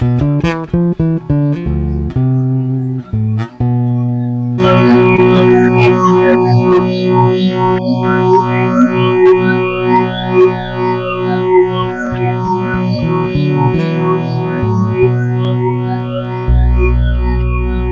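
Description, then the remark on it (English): Electric guitar through a phaser: a few quick plucked notes, then a sustained, slightly distorted chord whose tone sweeps slowly and swirls up and down, ending on a low note. No talking. “It's just the phaser, yeah.”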